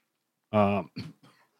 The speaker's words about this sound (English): excuse me as I cough up a lung.